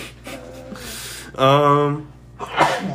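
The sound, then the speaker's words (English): A single sharp human sneeze bursts out, preceded by a quick inhaling gasp, with brief breathy noise trailing after it. “bless you. Salud.”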